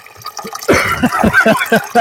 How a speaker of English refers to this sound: It is water. It is okay. Water. It is from a water closet.